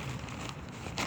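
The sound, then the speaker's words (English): Dry crinkling and rustling of newspaper rubbed across a tarp, a steady scratchy texture with two brief louder swipes near the middle and end. No one speaks. “I'm just wiping the tarp with this paper, newspaper.”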